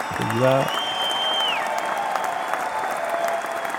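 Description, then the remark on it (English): Steady applause from a crowd fills the whole stretch, dense and fairly loud, with a brief rising tone at the start and a thin whistling tone that slides down partway through. “Applause this all round for that.”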